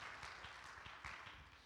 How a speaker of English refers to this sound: We need to all clap our hands and thank God for that fact.